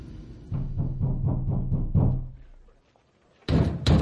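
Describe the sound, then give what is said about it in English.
Steady, evenly spaced knocking on a wooden door, about seven raps in a row, then a short pause before two louder, heavier bangs. “Here's a knocking indeed.”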